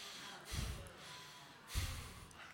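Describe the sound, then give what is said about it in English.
Two forceful, breathy exhales, like sharp snorts through the nose, about a second apart, done as a breath-of-fire rapid breath during a yawn. Fairly quiet, with no talking. “Remember, do like a breath of fire or a rapid breath through your yawn when you get it going.”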